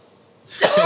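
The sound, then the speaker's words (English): After a moment of near silence, a loud, harsh cough bursts out, a raspy sputtering fit of someone choking on a sip of bourbon he made, with no talking. “…'s over here losing his life to a bourbon he made”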